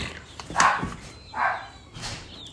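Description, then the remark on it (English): A dog named Turbo barks three times at a steady, unhurried pace, each bark short and somewhat muffled, with no voices over it. “No, I wouldn't deny him his bark. He's happy.”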